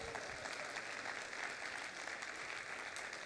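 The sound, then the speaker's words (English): An audience claps together in a sustained, dense burst of applause, many hands making steady crackling noise that fills the room at an even level for several seconds. “Well, if you're going to clap, go ahead and do it, all right?”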